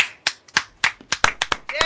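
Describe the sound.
Hands clap in a quick, slightly uneven burst of about nine sharp claps, with a short voiced exclamation rising over the final claps.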